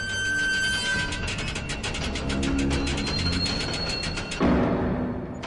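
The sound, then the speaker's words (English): The ancient hinges of a vault door creak as it is pulled open in a long, drawn-out groan, with high squealing tones over a rough, juddering grind that swells near the end. No voices. “With you all in position, you pull the door open and the ancient hinges creak.”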